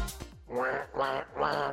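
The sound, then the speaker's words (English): A person imitates a duck with three loud, nasal quacks in a steady rhythm, after a brief breathy noise at the start. “What kind of duck is that?”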